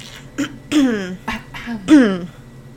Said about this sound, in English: I drank all the Sprite, so my let me just cough over here.